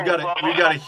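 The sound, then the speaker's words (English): A caller's voice comes through a narrow, tinny phone line during a Facebook Live show, the tone smeared and hollow as if doubled by a heavy back echo, steady for under a second. “we've got a huge back echo.”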